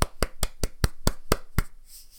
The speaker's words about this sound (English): Round of applause for everybody who has crushed their goals.